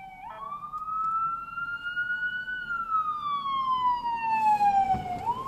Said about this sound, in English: Looks like we got an ambulance coming, so let me let this go through.